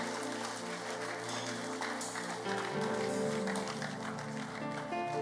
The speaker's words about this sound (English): Give God a mighty clap of hands.